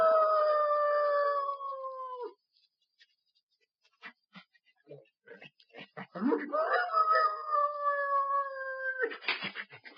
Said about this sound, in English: And later, when the ashes had cooled and while Sheriff Skinner was consoling Dr. Glazier on his loss, the sheriff's dog...